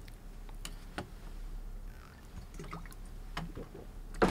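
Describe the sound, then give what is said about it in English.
Water pours, followed by a few soft swallowing gulps and small clicks of a cup, with faint background hum and no talking. “Okay, get some water here.”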